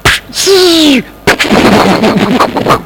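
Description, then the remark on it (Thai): A voice imitates a firework being lit after dark at a celebration: a high whistle that slides downward for about half a second, then a sudden loud burst followed by a sputtering, crackling hiss that fades out. “It's got dark now ตอนนี้ท้องฟ้าก็เริ่มมืดแล้ว And the person lights the firework คนไปจุดพลุ And you're expecting something like”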